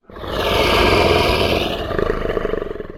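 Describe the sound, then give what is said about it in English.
A single long, deep, deafening roar from outside swells in quickly and holds loud for about three seconds as the ground shakes, rumbling and growling as it slowly trails off, with no voices around it. “The ground starts to shake as there's a deafening roar heard from outside.”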